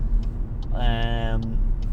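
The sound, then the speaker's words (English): Steady low rumble of road noise inside a moving car being driven back from trampolining, with a brief rising tonal whine in the middle and faint ticking clicks throughout. “I'm driving and not looking around.”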